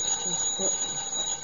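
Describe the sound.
A telephone rings with a steady, high-pitched trill that holds through the whole moment, while faint murmuring voices sit underneath.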